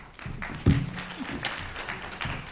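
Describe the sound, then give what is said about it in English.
A burst of audience applause at a courtroom hearing, a dense patter of many hands clapping at moderate loudness for a couple of seconds, with a brief low thump or vocal sound near the start. “Your Honor, we have no objection to that applause.”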